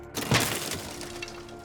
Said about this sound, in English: The door crashed forward as I turned the knob.